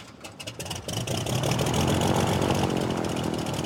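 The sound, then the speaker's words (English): The engine of a little tiny plane carrying a skydiver strapped in for a tandem jump sputters briefly, then settles into a loud, steady droning roar with a low harmonic hum that holds for several seconds. No one speaks. “Sitting in this little tiny plane, just absolutely losing it with fear.”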